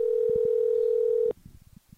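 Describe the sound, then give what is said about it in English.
A steady, unbroken telephone dial tone hums at one pitch for about a second and a quarter while a call is being placed, then cuts off abruptly, leaving faint background murmurs and small clicks. “No, let's just call it.”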